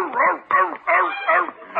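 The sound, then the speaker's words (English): A big dog barks loudly and close up, four deep, drawn-out barks in quick succession with brief gaps between them, like a Great Dane sounding off. “Cousin Bert Sends Leroy a Great Dane”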